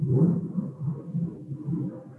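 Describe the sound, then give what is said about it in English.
A low, steady roar of an airplane flying overhead, a continuous rumble that swells and dips slightly without pause. No one speaks. “Is that an airplane going over UT?”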